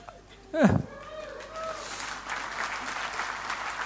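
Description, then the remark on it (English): An audience breaks into clapping for the speaker's 15th wedding anniversary, a steady, dense patter of many hands that swells and holds, following a brief vocal sound at the start. “I don't know why you're clapping me.”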